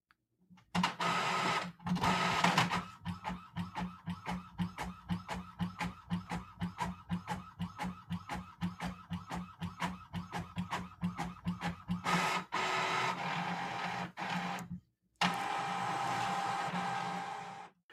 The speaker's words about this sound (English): Printing exiting WhatsApp TXT, Epson ET4550 series, Solid Explorer. All right. There goes my printer.